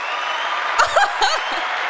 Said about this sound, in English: That was you guys cheering for us. Yeah, thank you.